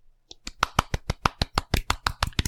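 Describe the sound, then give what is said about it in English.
A golf clap: about a dozen soft, crisp hand claps at a steady, unhurried pace, evenly spaced and moderately quiet, with no talking over them. “Golf clap.”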